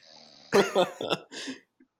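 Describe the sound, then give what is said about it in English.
A voice imitates a loud snore: a few harsh, rattling snorts in quick succession, forceful, then a brief quiet tail. “And it's just a loud snore.”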